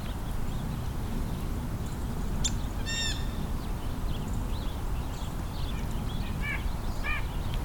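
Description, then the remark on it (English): A blue jay gives a harsh, harmonic call around midway, followed by a couple of shorter calls near the end, all over a steady low outdoor rumble with faint other bird chatter. “Listen to that blue jay.”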